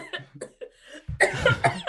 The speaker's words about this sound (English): Oh, we're all bloody coughing. That water went down the wrong way.